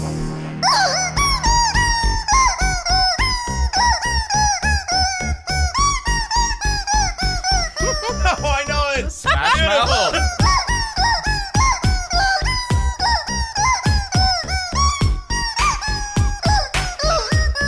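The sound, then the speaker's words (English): A rubber chicken toy, plucked by a performer, squeaks out a rapid, rhythmic melody, its shrill pitched squawks bending up and down like a tune, loud with a steady beat underneath and no talking. “And now the moment you've all been waiting for, the man with the magic fingers. He plucks that rubber chicken like nobody”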